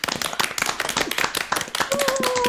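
A round of applause from a group who unmute to clap after a talk: dense, irregular crackling claps overlapping steadily throughout, with a faint sustained tone appearing near the end.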